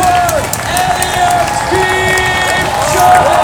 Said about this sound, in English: The Pacers are cheering. Everyone's got their hands up. Everyone.